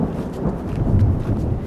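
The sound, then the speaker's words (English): A low, steady rumble of thunder rolls on for a moment at moderate loudness, with a rough, crackling texture and no voices present, as a hiker looks for a tent campsite near trees on a trail while it grows dark. “And then it begins to thunder again.”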